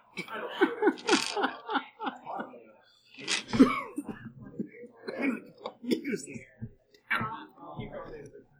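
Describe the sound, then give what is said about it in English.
Several harsh coughs and throat-clearing sounds from someone, coming in irregular bursts mixed with breathy, murmured vocal noises. “Does the voice also start coughing?”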